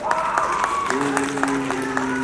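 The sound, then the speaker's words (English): An audience applauds steadily to vote for the Sega team as funnier, with scattered claps running throughout and sustained vocal or tonal sounds mixed in, moderately loud. “Give us a round of applause if you think the Sega team was funnier.”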